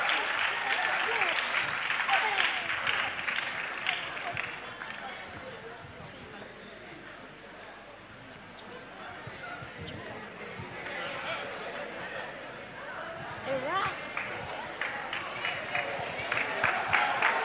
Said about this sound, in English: So, next on our legs, we have choreography. Let's give an a hand of applause for them. Woo!